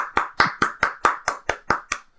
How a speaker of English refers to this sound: And that's not me marking the track for editing purposes. That's me actually clapping for a good segue.